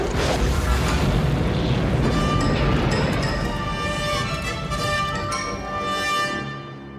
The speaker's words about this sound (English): Sensors report energy weapons fired Captain Solo's location, General, followed by an explosion. We've lost the blip.